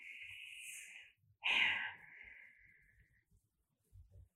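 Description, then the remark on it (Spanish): An airy deep breath: a steady inhale lasting about a second, then a sharper, louder exhale that trails off slowly into near silence. No one speaks. “Es bueno una respiración profunda.”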